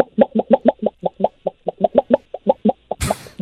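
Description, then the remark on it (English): A radio show caller from North Vancouver imitates a chicken, in place of a meow, with a rapid series of short, clipped clucks in an uneven rhythm while waving his arms like wings, then breaks off into a burst of breathy noise at the end. “Instead of a meow, can I give you a chicken?”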